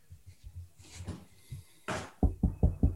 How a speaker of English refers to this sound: Right. I knocked on the table.